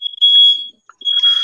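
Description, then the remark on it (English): A smoke alarm blares with a loud, piercing high-pitched tone in two long beeps separated by a brief gap. The second beep is harsher and buzzier, and no one speaks. “And someone changed their fire alarm batteries.”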